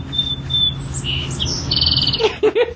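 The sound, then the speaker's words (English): A bird chirps and squawks in a quick series of high, shifting calls, ending with a few short, harsher notes, over a steady low hum. No one speaks. “Bird, go talk to your family somewhere else. I'm trying to record a podcast.”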